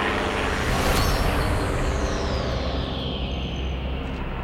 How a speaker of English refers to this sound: Guys, into the trees. A plane's coming. Get out of sight.